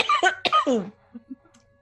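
Two loud coughs in quick succession, the second trailing off into a voiced, raspy tail, followed by a few faint low thumps in near-silence.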